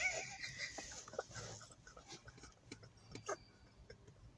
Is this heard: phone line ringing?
no